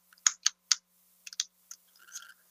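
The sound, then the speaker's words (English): Several sharp, irregular clicks of keys being pressed on a computer keyboard, fairly quiet, with short pauses between small bursts and no talking, as someone works the keyboard without a mouse. “If you give me just a moment as I work my keyboard.”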